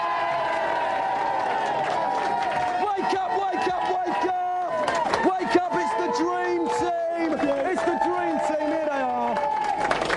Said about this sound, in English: All right, let's go and meet the next team. Give them a big cheer. Yeah!